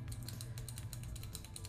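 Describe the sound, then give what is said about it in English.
A rapid, steady stream of sharp little clicks from retractable pens being clicked over and over, with a low hum underneath and no one talking. “We both have clicky pens.”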